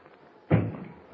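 knocking

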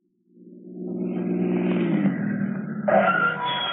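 car engine revving

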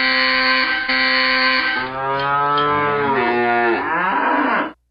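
cow mooing sound effect

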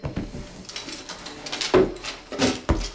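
drawer being opened

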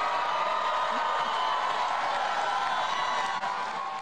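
excited crowd cheering

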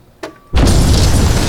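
explosion boom

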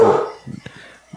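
dogs barking

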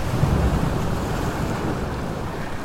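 ocean waves and surf

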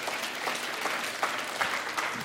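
audience applause

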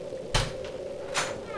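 door creaking open

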